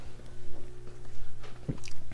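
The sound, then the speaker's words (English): A sip from a drink: soft mouth and swallowing noises, a sharper slurp near the end, all over a steady low background hum with no talking. “I just had my first sip there.”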